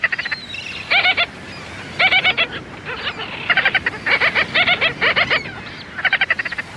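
Gull-billed tern calls: about eight harsh, rapid stuttering bursts in quick succession, fairly loud, over a faint steady outdoor hiss with no talking.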